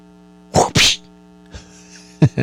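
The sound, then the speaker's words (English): A loud two-part sneeze performed by the show's host as a sound effect, a sharp intake then a forceful burst, followed by faint breathy noise and a couple of short sniffing bursts, all over a steady low electrical hum. “See, I do my own sound effects around here sometimes.”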